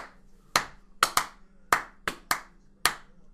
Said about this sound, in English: Give yourself a big round of applause for downloading right now.